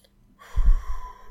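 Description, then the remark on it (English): A single deep breath drawn in as a deep breathing exercise, a soft rushing swell that rises quickly and then tapers off, with no talking. “So I guess this isn't really a Rando resolution, but a Rando interesting tip I found in an unexpected place is consider learning some, you know, deep breathing exercises, you know, so do like a...”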